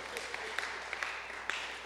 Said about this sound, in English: I think that's worth a round of applause as well.